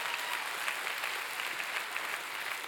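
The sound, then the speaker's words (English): An audience claps for mothers, a steady, dense wash of many hands striking at once with no pause, sustained at an even, fairly loud level throughout. “Come on, can we clap our hands for mama?”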